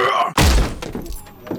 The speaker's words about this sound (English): He squared up the door and planted a heavy kick, flinging the door wide open.